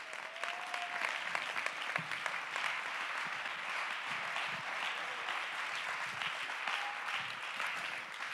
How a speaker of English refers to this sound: Come on, clap your hands to give God the praise.